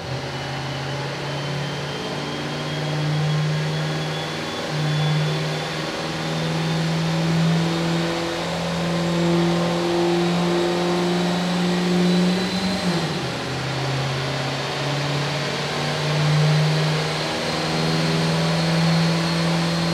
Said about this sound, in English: Alan Burke on the dyno, last truck of the day. First official pull, getting ready here.